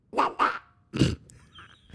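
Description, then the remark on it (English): A person imitates a duck with three loud, nasal quacks: two quick ones in a row, then a pause and a third, lower and longer honk, with no speech around them. “When I was a kid, that was how I did duck sounds.”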